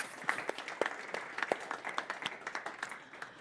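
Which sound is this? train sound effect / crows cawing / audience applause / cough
audience applause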